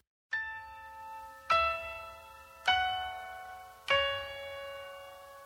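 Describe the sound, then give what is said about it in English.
The opening of a Christmas blues song: four slow, resonant bell chimes, struck roughly a second apart, each ringing out and fading before the next, with no singing or other instruments yet. “Let's go ahead and play that and then we'll talk about it.”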